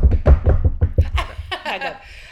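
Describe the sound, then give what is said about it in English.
A quick flurry of about seven or eight loud wooden knocks from several people, uneven in rhythm, followed by a burst of laughter. “Let's all knock.”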